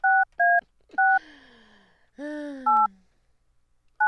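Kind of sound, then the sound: signal or alarm, telephone keypad dialing tones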